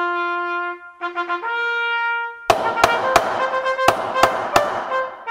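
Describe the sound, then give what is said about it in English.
Loud banging on trash cans, roughly seven sharp clangs in an uneven rhythm, comes in after a brassy fanfare-like melody that opens alone and keeps sounding underneath the hits. “As you can hear from the banging trash cans, it is time for the King's Court.”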